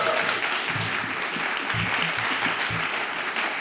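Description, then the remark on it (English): An audience at Move Summit 2024 claps and cheers for the event in a steady, dense wash of applause, with a few low shouts and whoops rising above the continuous clapping throughout. “Can I have a massive cheer for Move Summit, please?”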